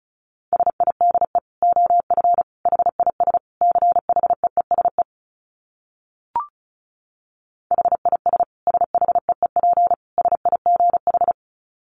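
Rapid Morse code at 35 words per minute: a steady mid-pitched tone keyed into quick dits in two long runs, split by a silent pause with a single short click, and no voices.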